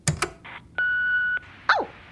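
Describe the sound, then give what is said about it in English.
A pair of sharp clicks, then a steady electronic beep of an answering machine playing back a new message, lasting about half a second, followed by a quick downward-sweeping chirp, all fairly clear. “A new message on the answer phone.”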